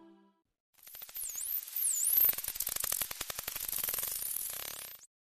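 High-pitched dolphin or killer whale calls: a few looping, rising-and-falling whistles over a hissy background, followed by a rapid, buzzing train of clicks and pulses lasting several seconds.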